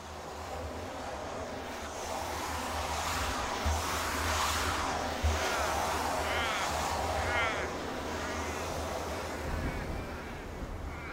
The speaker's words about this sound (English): The windiest day in the high country. The lyrebirds are kaleidoscopes. Mirror birds stealing your voice. Through their cries, I can look out and see lavender hills.